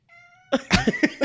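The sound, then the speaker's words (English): A cat named Trixie meows: a thin, steady call followed by a quick run of four or five louder, rougher chirping meows. No one is speaking. “Now she's not meowing. Of course. Oh, there we go.”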